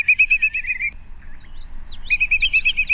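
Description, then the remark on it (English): A whimbrel (Numenius phoebus) gives a rapid series of clear whistled calls in two bursts with a short gap, plus softer chirping in between, fairly loud with no voices. “The whimbrel, Numenius phoebus. Today's Talkin' Birds featured feathered friend.”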